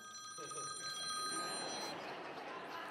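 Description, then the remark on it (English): A phone rings with a bright, warbling electronic trill, sustained tones sitting over a busy, noisy background with faint voices beneath. “I'm just going to shut the thing off. That's the only way I know how to get rid of it. I hate phones.”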